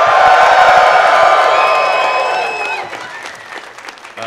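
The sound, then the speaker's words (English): A live crowd at Nerdtacular 2017 roars with loud cheering, whoops and applause, a dense wall of voices and clapping that gradually fades out over a few seconds. “One more big yell from the crowd who is here and in charge. Go, give it to me loud.”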